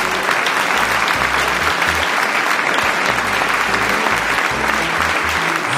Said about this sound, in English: Ah, this is where we put in the fake applause. It's not really fake, though. Everybody is like clapping for you.